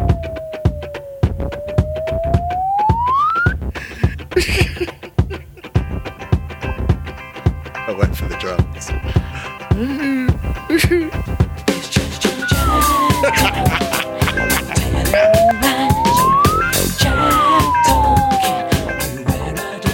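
A slide whistle plays a tune in a slide whistle game, in long swooping glides, dipping low then climbing high, fading in the middle and returning with rising and falling sweeps over a dense, busy background.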